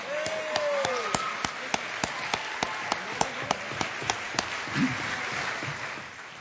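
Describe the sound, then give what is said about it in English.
An audience at an evening event applauds two honorees, with sharp, evenly spaced claps ringing out in a steady rhythm over a continuous background of crowd noise and murmuring. “Let's have a big round of applause for our two superstars”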